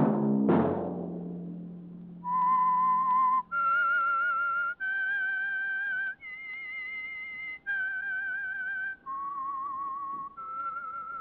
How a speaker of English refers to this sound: That whistle be your signal for the Signal Oil program, The Whistler, each Wednesday night at this same time.